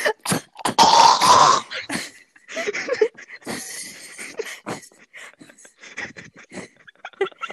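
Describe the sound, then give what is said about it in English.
A voice imitates a baby walrus burping: a loud, raspy, gurgling croak lasting about a second, followed by several shorter throaty grunts and breathy bursts. “It was like, it sounded like a baby walrus burping.”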